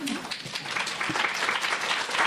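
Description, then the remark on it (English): Audience applause fills the whole stretch, a dense steady wash of many hands clapping at moderate loudness with no pauses, and a faint murmur of voices underneath. “I hope everyone claps at the end of what I say, too.”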